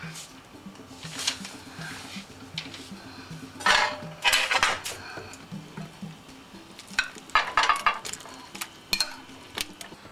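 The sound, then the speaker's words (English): An egg-and-matzah mixture goes into a heated nonstick frying pan with a little vegetable oil: a faint sizzle runs underneath as a utensil scrapes and clinks against the pan in irregular bursts, with no one talking. “Give it a chance to heat up, and then I'm going to have my matzah and egg mixture in the frying pan.”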